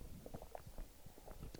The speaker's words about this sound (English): That gulp was brought to you by Sobe Life Water. It's delicious.